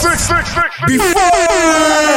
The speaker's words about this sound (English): Where the fuck is my air horns?